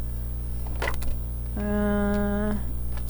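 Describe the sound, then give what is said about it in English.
A quick burst of tarot cards being shuffled, a few crisp riffling clicks lasting under a second, followed by a person singing a short sustained melodic phrase. “I'm just shuffle. La la la. Final cards.”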